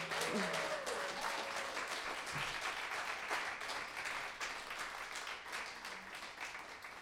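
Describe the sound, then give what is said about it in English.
A crowd applauds the house band of the Songbirds Radio Hour show steadily, a dense wash of many hands clapping at an even, sustained loudness for several seconds, with faint voices and a brief cheer mixed in near the start. “Y'all give another round of applause for our great house band”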